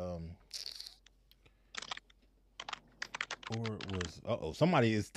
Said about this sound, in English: Somebody typing, boy, trying to figure this thing out. He sound like he over there trying to hack for sure. Right? Yo, he over there hacking. He did sound like a hacker.